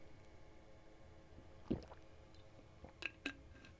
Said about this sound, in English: Let's get the water bottle out here. We'll take a little drink.